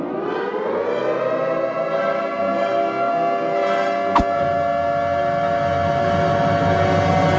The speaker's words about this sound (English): Martha's Vineyard! Sound the alarm!